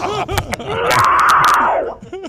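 A woman's harsh, distorted scream in a metal vocal style, screaming a hardcore metal song: one sustained gritty roar lasting over a second, loud and raw, with brief breathy bursts around it and no instruments audible.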